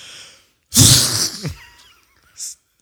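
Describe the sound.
A voice imitates a woman sneezing and vomiting at the same time: a sudden explosive sneeze that turns into a wet, retching splutter, loud, trailing off into a short hiss.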